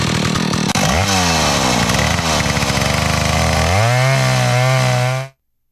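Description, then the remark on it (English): A loud, rattling drone like an idling chainsaw, made by a woman's voice, its pitch sagging and surging for about five seconds before cutting off abruptly. “She does sound like the idol of a chainsaw.”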